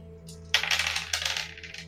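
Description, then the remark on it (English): Dice are rolled for a perception check, clattering and tumbling across a hard surface in two quick bursts of bright, rattling clicks, with a low steady hum underneath and no one talking. “1 dice out of 6 rolls.”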